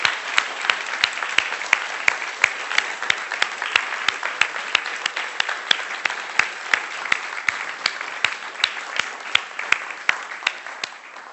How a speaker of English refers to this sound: Can we just honour these guys who together have sought to lead this church from start through to now, and we'll lead it onwards, please? We just want to give them a round of applause to honour and thank them for all they've done.